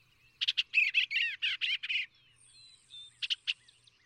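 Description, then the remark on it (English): A bluebird sings a quick run of warbling, slurred notes, then pauses with a thin high whistle before a few last short chirps. Heard alone, at modest volume. “the bluebird brings one of the primary hues and is the divinest of them all.”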